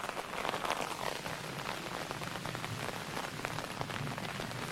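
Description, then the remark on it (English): Steady rain pours down outdoors on people who are getting soaked: a dense constant hiss with scattered droplet patter on surfaces, holding an even, moderately loud level throughout with no voices. “You guys are getting soaked.”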